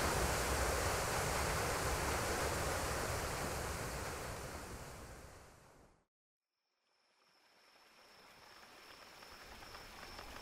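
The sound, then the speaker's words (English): Loud, steady rushing water roars at the mouth of a river, then fades out into a moment of silence. A softer, calmer wash of water rises again with a faint thin high tone above it. “The relentless mouth of the river gives way to calmer waters for the voyagers”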